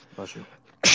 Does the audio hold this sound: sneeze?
yes